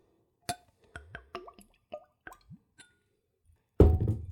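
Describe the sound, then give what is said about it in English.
Galeva whiskey poured from a bottle with a twist-off stopper into a clean Glencairn glass: a quick series of hollow glugs and plops with faint glassy ringing, then a louder, steady rushing splash near the end. Fairly quiet, with no talking. “Okay, let's go ahead and open it up and go for a pour.”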